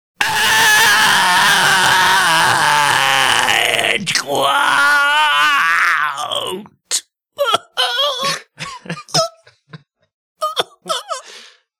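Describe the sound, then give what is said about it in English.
A voice acts out pained groaning in a dramatic reenactment of a woman having glass pulled out of her eye: a long, loud, strained moan for about six seconds with a rising and falling wail, then a string of short broken grunts and gasping sobs. “I think we have a dramatic reenactment of what it sounded like when they were trying to pull the glass out of her eye.”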